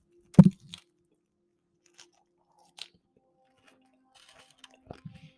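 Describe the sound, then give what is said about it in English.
A loud crunching bite opens, followed by scattered quieter chewing and mouth sounds with gaps of near silence, then a few more crunches near the end. No one speaks. “eating just like that sound just brought up so many things”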